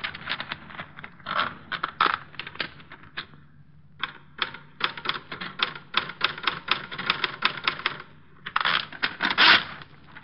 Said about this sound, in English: There's the party list she told us about. Good 30 names here. Typed. There's a typewriter.